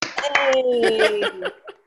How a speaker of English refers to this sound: Thank you. Hold your applause, please. Thank you. Hold your applause. I will make a speech later. Thank you. Hold your applause.